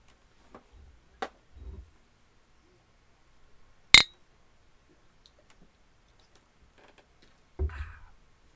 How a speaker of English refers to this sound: Whiskey and beer. Clink and drink.